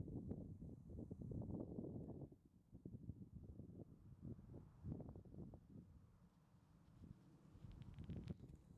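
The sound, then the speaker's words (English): Wind gusts buffet the microphone outdoors in North Wales at lunchtime on a windy Wednesday, a steady low rumbling roar that surges and dips throughout, strongest at the start and again near the end, with no voices. “It was quite windy.”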